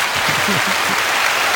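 A crowd claps hard and fast in a dense, steady wash of applause for over a second, with faint voices murmuring underneath.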